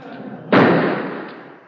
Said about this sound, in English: That. Did you hear that? If I could hear that, I'd be in the Coast Guard. Gunshots. Must be murder.